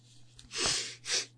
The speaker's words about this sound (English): And like last week's episode, allergies are in full swing, so please forgive the sniffling. I know it's gross.